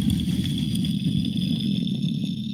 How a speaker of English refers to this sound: As this gleaming blue and orange spaceship descends past the window, clearly landing in the yard outside.